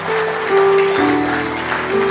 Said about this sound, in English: Clap your hands.